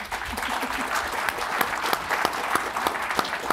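An audience claps steadily, a dense patter of many hands with sharper individual claps popping out now and then, sustained at an even level throughout.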